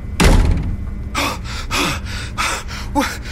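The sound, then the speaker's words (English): A door slams shut with a single loud thud, followed by four sharp, breathy gasps in quick succession. “Close the door.”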